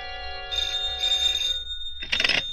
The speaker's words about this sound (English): At 8, my phone rang.